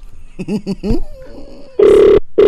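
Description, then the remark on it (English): Outgoing phone call ringback tone: a loud, steady electronic burr sounds, stops briefly, then starts again, following a few short, indistinct vocal sounds at the start. “It's ringing.”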